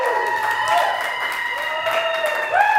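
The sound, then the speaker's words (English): A live crowd in New Orleans claps and cheers steadily for a few seconds, with dense applause under rising whoops and shouts, growing slightly louder at the end. “New Orleans, clap it up, live Run Your Mouth podcast.”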